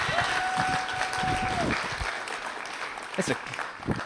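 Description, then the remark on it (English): An audience claps steadily for about four seconds to welcome a youth pastor, a dense, even wash of applause, with a sustained whistle-like tone riding over it during the first second and a half. “You guys gave me a clap.”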